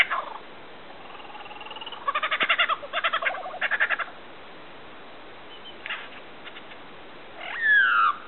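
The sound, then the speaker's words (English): Frogs in the Alps calling in several short bursts of rapid, pulsing croaks, clear, followed by quieter scattered calls and a brief higher chirp near the end, with no one talking. “But there are some truly special frogs in the Alps, found only there and sadly much”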